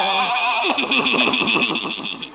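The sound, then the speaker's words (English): A horse pulling Old Doc Yak Yak's buggy whinnies loudly, a single shrill call of about two seconds with a rapidly quavering, wobbling pitch that trails off at the end. “Old Doc Yak Yak and his horse and buggy.”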